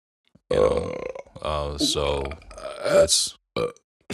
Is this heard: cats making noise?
no